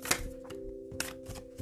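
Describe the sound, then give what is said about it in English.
Quick, crisp riffling of a deck of cards being shuffled, a run of sharp papery snaps and flutters over a soft steady background hum, with no talking. “Also, whilst I'm shuffling, maybe think about, what does leveling up mean to you?”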